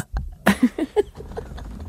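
A loud, close burp right into the microphone, a low throaty rumble broken into a few short voiced pulses, then fading into quiet room noise.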